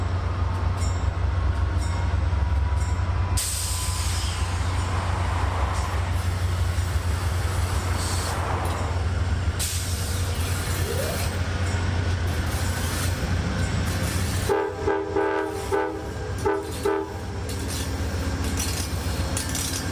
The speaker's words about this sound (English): A nice company here in the observation car. When you travel by Amtrak, you should go into the observation car, because it's where everything happens, where you get a chance to make new friends, to meet new people.